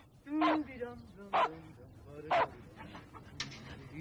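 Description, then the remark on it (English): A dog named Ruff, in a scene from the 1980 film Resurrection, barks three times, loud, sharp woofs spaced about a second apart, followed by a quieter stretch with faint voices and low background murmur. “Get down, Ruff. Get down.”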